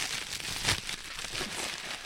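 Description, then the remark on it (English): A plastic bag crinkles and rustles for a couple of seconds as it is opened to show black walnut nuts, with a sharper crackling burst near the start and softer handling noise continuing after, no voices. “There are potato sacks and plastic bags on the floor. Diana opens one up to show me the nuts of a black walnut tree.”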